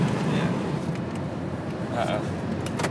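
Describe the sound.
Steady low road rumble fills the inside of a moving car, with a brief mechanical whir partway through as a window rolls up. Faint muffled voices may sit under the noise.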